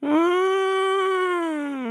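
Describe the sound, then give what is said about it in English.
An elephant trumpets once in a loud, sustained blast lasting nearly two seconds. The steady brassy tone holds level and sags slightly at the end, heard alone with no talking. “Trumpeted the elephant.”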